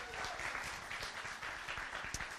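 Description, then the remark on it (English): Steady applause from a church audience, many hands clapping in a dense, continuous patter that holds at an even loudness throughout, with no voices standing out. “I love this applause. Let's keep this up.”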